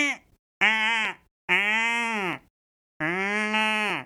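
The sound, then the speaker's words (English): A person imitates a goat with three drawn-out, low, buzzy bleats, each held steady for about a second, after a brief clipped start. The calls are loud and separated by short silences. “Yeah, I have worked on all my animal noises. Yeah. I do a pretty good goat.”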